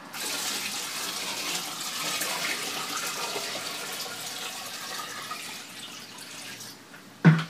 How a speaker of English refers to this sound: My brother started scooping wastewater with one bucket and poured it into another.